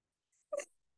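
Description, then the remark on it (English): A dog dreaming in its sleep lets out a single brief, soft whimper with a faint breathy edge, heard alone with no one talking. “And Toby's dreaming.”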